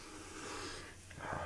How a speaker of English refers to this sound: I'm not breathing properly now. heavy breathing.